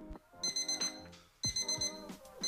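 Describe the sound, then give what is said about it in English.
An alarm clock going off early rings out in two loud bursts, a bright, piercing electronic tone repeating in quick pulses with a brief pause between them; no one speaks. “Why is your alarm going off so early again?”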